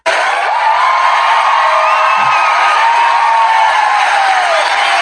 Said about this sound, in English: He's going to get the big applause.